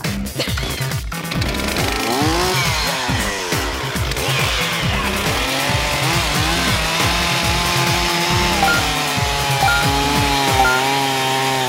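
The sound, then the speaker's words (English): A chainsaw-like power tool runs loudly and steadily, its engine pitch rising and falling as it revs repeatedly, with no talking. “I knew there'd be a Texas Chainsaw Massacre reference.”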